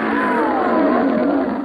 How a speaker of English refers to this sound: They seem to almost finally notice that there is something in their way, and one great eye rolls and points down towards you, and Ubasi lets out another roar, this one sounding almost pleading and pained.